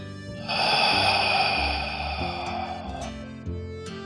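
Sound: slow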